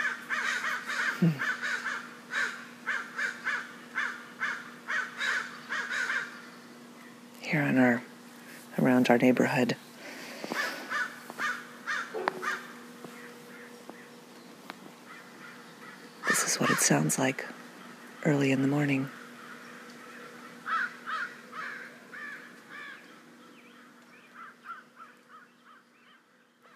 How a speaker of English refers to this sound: There's our crows. We have a whole community of crows.